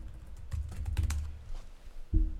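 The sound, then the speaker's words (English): Rapid clicking of keys as someone types a note listing use cases for Bud Light on a keyboard, a quick run of taps followed by a short pause and a final heavier keystroke, moderately quiet. “And then perhaps I'll actually note that down right here.”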